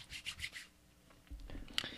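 Quiet keyboard typing: a quick run of soft, scratchy key taps, a pause, then a few more clicks ending in one sharper keystroke. No one speaks.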